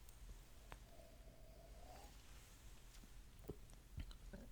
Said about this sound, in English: This I get that I also get that butterscotch vanilla-y, but what makes it different is that underlying smoky peatiness that you would expect from an Isle Scotch. Let's take another sip.